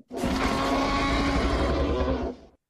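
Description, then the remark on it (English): A single loud, sustained T-Rex roar sound effect, deep and rumbling with a harsh, gritty growl, holding steady for about two seconds before cutting off abruptly. No one speaks over it. “Does he deserve a applause, air horns, or a T-Rex? He deserves a T-Rex there.”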